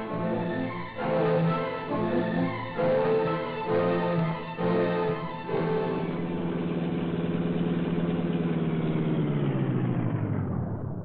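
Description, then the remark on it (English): The engine of the Black Beauty car revs in several rough bursts, then settles into a steady, loud humming drone as it drives on the south road, with no voices. “Come on, Cato, we'll take the Black Beauty again and investigate that deserted brickyard on the south road.”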